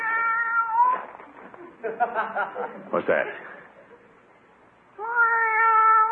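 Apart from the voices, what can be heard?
cat meowing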